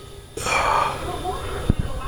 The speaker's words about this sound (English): There's that breathing.